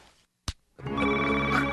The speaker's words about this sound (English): It's 3 a.m., and the phone's ringing in the White House. Who do you want to answer that call?